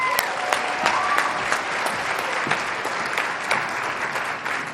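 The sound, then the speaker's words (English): A crowd applauds steadily as a speaker is introduced, a dense wash of clapping with sharp individual claps popping out, plus a few high whoops and cheers riding on top, sustained at an even, loud level throughout. “Let's show him a lot of love and get loud. Give it up for”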